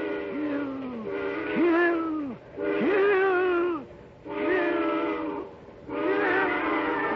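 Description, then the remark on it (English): A steam train whistle shrieks in four long, wavering blasts with short gaps between them, loud, its harmonic tones bending up and down like a wail. “And then as the eerie shriek of the train whistle suddenly blasts into his ears, a new thought is wedded to it.”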